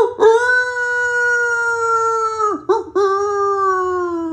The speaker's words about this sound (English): And little Willy the Wolf grew up to be a big, nice daddy wolf. And when the moon came out, you could hear Willy howling in the distance.